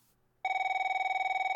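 A telephone bell starts ringing abruptly at home in Ukraine after a moment of quiet, a loud, steady electronic trill with rapid regular pulses and strong harmonic tones, with no one speaking.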